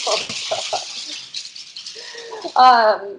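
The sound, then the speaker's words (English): Two French bulldogs making a racket: a busy jangling rattle at first, then low whining that builds into a loud, brief, harmonic yelp or bark at the end. “I have two French bulldogs and of course they were like super chill until right now.”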